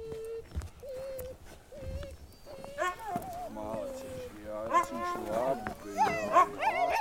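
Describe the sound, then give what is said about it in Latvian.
Huskies whine in short, high, steady cries, then break into louder, warbling yowls and yelps that build in intensity toward the end, insistent, protesting at not being taken along for a ride. “Jā, Huskijs šādā veidā izrāda savu neapmierinātību, un tā ir viņa nostāja attiecībā pret mums.”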